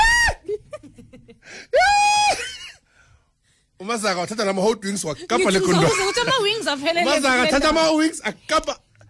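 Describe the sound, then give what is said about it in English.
A voice imitates the terrified scream of someone as a rat came running straight at them: two shrill, high-pitched shrieks at the start, then a pause and a long, loud stretch of frantic wailing and yelling, intense. “I'm on top of my car screaming”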